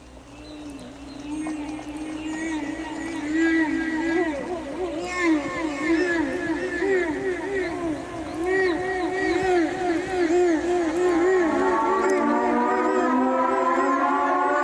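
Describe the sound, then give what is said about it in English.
Eerie, whale-like cries swoop and warble up and down over a steady low drone and a bass line, growing louder and denser as the intro of the opening track of a 1987 rock album builds, with no one speaking. “Sounds like whale noises. It does sound like whale noises.”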